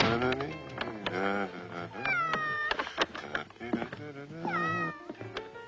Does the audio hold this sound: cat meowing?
yes